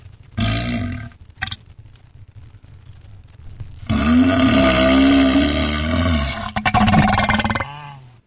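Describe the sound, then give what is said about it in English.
A loud, drawn-out burp rumbles, a short belch followed by a longer, growling one lasting several seconds with a throaty, roaring texture, no speech around it. “That sounded like a burp.”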